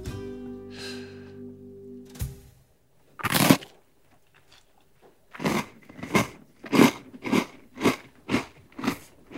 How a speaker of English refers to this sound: That was an Oreo. Was it? Yes! That is really good. And I I took a bit of artistic license there, and I did bite through it because I just wouldn't put a whole Oreo in my mouth.